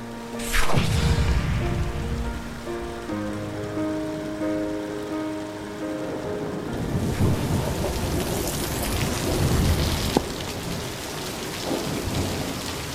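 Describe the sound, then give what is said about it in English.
Heavy rain pours down steadily while deep thunder rumbles and rolls, with a loud crack near the start and more booming swells later. No voices are heard. “The fairies cheer, dive, and fly in the hard driving rain.”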